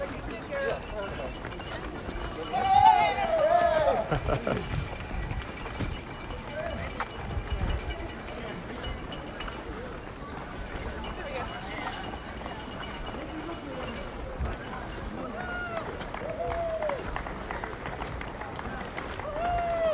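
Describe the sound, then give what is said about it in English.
Spectators out on the balconies of a huge apartment complex cheer and call out over a steady outdoor bustle, with hurried footsteps and scattered voices and a cowbell ringing; a brief louder burst of shouting rises early, then the crowd noise settles into a continuous background. “So, We're passing a huge apartment complex with people out on the balcony cheering on.”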